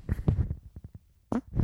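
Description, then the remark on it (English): A loud, sputtering fart: a rumbling low burst, then three quick little pops, followed by another wet, blubbery blast at the end. “That was not even a good fart.”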